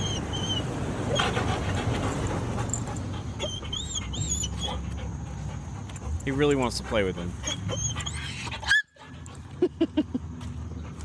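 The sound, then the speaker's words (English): A German shorthaired pointer whimpers at goats in several high, wavering whines, mixed in with a person talking over steady outdoor background noise. “See, he's got the goats here.”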